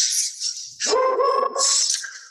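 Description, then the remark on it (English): A female dog lets out a single drawn-out, tonal bark, fairly loud, framed by a steady hissing noise before and after. No one speaks. “The dog doesn't like it. But my dog is voting. She's got an opinion.”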